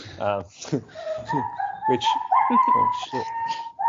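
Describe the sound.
A dog whimpers and yelps in pain after spraining its wrist running around a backyard, whining in a high, drawn-out tone with sharp yelps, sounding distressed, while people talk over it throughout.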